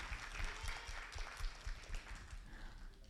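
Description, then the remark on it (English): A crowd at a youth service applauds the students who ministered, in a steady, dense wash of many hands clapping, with scattered louder claps popping out over the continuous patter throughout. “Give them another round of applause, would you?”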